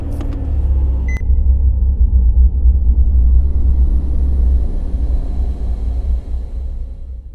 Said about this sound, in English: It is the actual sounds of me grabbing my keys off the rack and opening the house door, and then of course getting in my car and starting it up.